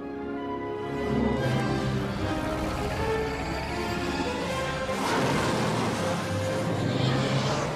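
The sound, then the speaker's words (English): A car engine runs loudly and continuously, a dense rumbling roar with a steady whine on top, surging briefly around the middle amid some rattling clatter. “They miss the train and they steal the car.”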